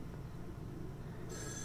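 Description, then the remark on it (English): A low background rumble fills the moment before an old telephone bell bursts into a bright, metallic ring near the end, cut off after a brief fraction of a second. “Look at that fucking old phone.”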